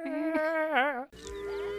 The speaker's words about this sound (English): It's just like a cacophony of animal noises. Yeah, just so you know, you're at an animal place. Yeah, I do like that they're using that goat noise. Yeah. Because you get a bunch of mooing, and then in the distance, you just get like a distant